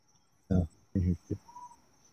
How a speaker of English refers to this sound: What did those grasshoppers say again? Or those crickets? What are they saying? Did y'all hear them crickets?